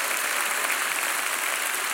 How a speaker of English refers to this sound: Clap your hands and say amen.